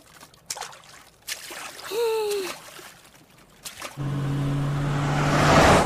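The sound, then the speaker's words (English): Choppy water slaps and splashes around a boat, with scattered splashes at first, then a steady rushing wash and a low engine hum taking over. A brief voice-like sound rises early on. “This water's a little choppy.”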